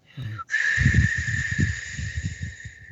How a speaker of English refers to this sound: And usually they make the sound, whistle sound, mm-hmm. and we call it sunbi sori.